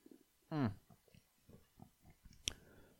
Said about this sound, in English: So, I gotta get a sip here.